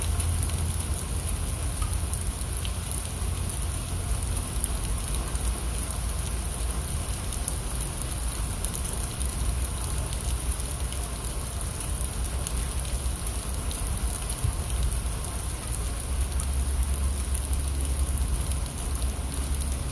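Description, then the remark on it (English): Steady rain falls without pause, a dense, even hiss of drops pattering on a surface, with no voices and no change in intensity throughout. “As we listen to the rain.”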